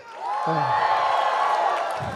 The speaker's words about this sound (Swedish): Det är underbart med jubel bland Guds folk. Vi får höra lite till. Jubla! Ja, lite bättre!